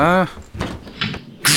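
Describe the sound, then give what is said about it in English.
A heavy, giant golden ornamental castle door grinds open with a loud, tonal groan at the start, followed by scraping and rumbling bursts and a sharp hiss at the end, all within a couple of seconds. “Oh shit, they're open.”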